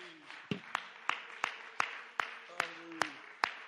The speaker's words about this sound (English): Somebody clap your hands one more time and magnify the Lord.